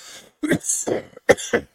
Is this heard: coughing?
yes